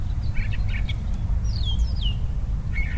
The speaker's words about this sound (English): You can tell by the sounds of the birds singing, spring has definitely sprung in our neighborhood. I'll just let you hear that for a second there.